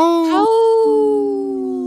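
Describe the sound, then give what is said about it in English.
A person gives a sustained howl in imitation of a wolf, the voice sliding upward, then holding a long, steady pitch that fades slightly toward the end. It is loud and unaccompanied. “Howl! Oh, I heard you”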